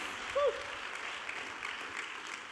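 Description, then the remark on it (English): A church audience applauds steadily, a dense wash of many hands clapping at once in praise to God during a sermon, with a brief voice-like tone rising near the start. “Clap your hands and give God praise today, because I'm doing a good job preaching.”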